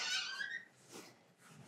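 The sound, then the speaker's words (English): A door creaks open with a loud, high-pitched squeak lasting about half a second, then fades into faint rustling and quiet shuffling sounds. “Open that door.”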